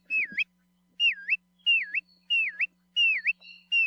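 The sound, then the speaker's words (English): A Kioea (bristle-thighed curlew), a shorebird with a long, downward-curved bill, gives a series of clear, looping whistles, about six evenly spaced calls, each dipping down then sweeping back up, loud with no other sounds around them. “If you see a bird near the shore with a really long, downward curved bill, with a call that's been described as sounding like whistles of an adoring pursuer, you're probably looking at a Kioea.”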